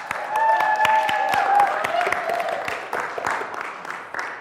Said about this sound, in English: So clap for our offering.